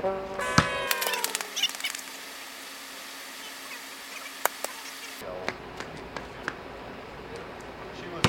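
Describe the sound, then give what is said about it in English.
Basketball shots taken by a doctor in the Sawbones Challenge bank off a backboard, several sharp, irregular thuds and bangs spaced a second or so apart, with a steady hum of background noise and brief voices early on. “Another doctor coming in and banking shots in.”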